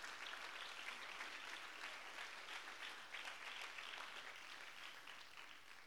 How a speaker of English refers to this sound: Why don't you clap your hands unto the Lord so I know you're still awake?